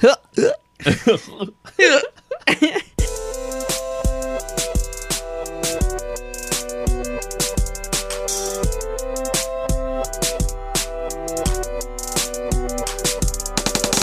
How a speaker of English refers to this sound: Get a little pre-roll with the hiccuping.